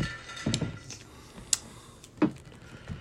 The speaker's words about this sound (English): Oh, and she's typing.